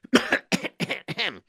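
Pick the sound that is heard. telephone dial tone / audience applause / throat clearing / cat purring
throat clearing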